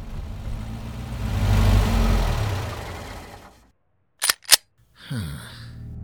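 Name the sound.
car engine running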